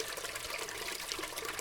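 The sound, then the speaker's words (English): A toilet flushing, a steady, muffled rush of running water that stays even throughout, fairly quiet, with no one speaking. “How long of a flush is that toilet?”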